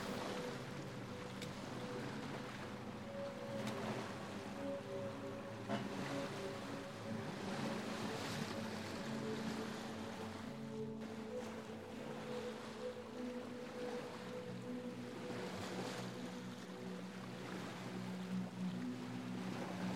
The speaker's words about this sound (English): You're voyaging on a small boat, hanging over the edge, watching as the bow of the ship slices through the inky blue waves.